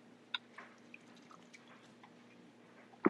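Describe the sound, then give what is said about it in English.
Someone drinks Liquid Death canned mountain water: faint, scattered drips and small liquid clicks, ending abruptly with a sudden loud burst of sound. “Check it out. Here we go. Listen. Liquid death, baby.”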